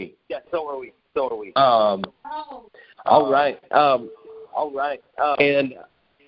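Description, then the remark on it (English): Muffled, garbled voices over a conference call line, doubled by a bad echo that persists even with the speaker's phone muted, making the speech smeared and hard to follow. The bursts come in choppy, uneven stretches with brief gaps between. “Yeah, so even when I'm muting my phone here, it's still getting that bad echo.”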